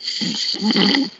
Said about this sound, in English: Should we see if he's still snoring? Okay. So you're going to hear snoring and music for 5 minutes, and I'm going to come back and see if he's still snoring.